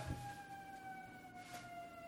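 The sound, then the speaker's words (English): A wailing emergency vehicle siren comes down the street, sounding steadily at moderate volume with its pitch slowly falling, with faint traffic rumble underneath. “siren coming down our street here.”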